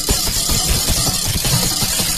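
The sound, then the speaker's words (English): A wire whisk is rubbed against a microphone, making a loud, continuous scratchy rustle with uneven low thumps and bumps throughout, and no voices. “You have to identify what I'm rubbing on my mic.”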